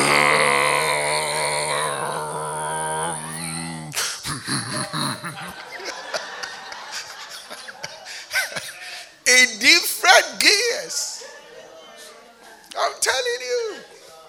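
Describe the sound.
A voice mimics snoring: a long droning tone, then a string of rough, groaning snorts with rising and falling pitch, several loud bursts near the end alternating with quieter breathy stretches.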